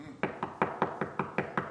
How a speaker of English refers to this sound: So let's knock on the door.